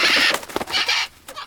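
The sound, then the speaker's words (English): A bird, Polly, comes flying in, squawking loudly in a rapid series of harsh, raspy, high-pitched bursts that break off briefly and then resume, with no voices present. “But just then, Polly came flying in, squawking loudly.”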